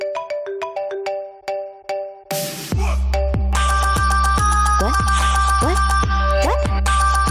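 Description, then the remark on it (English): A bright melodic phone ringtone chimes in quick plucked notes, then a burst of noise gives way to a loud, steady electronic jingle with pulsing bass and rising synth swoops. “Get your phones.”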